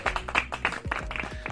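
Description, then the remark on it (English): A brief burst of scattered hand clapping, sharp irregular claps from what sounds like just a couple of people, fairly loud, with no talking over it, applause for a guest in a studio with no audience present. “Yes, everybody stand up. Give my man an applause.”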